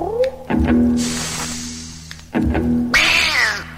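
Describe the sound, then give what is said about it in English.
Two drawn-out, yowling cat meows, one early and a louder, wavering one near the end, sounding strained over a steady low humming drone. “Meow.”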